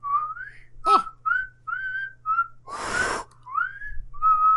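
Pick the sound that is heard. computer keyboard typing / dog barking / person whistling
person whistling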